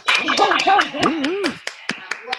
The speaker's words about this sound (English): All right, let's have us a good round of applause and stuff for absolutely no reason. Yeah, show me some love. Show me some love.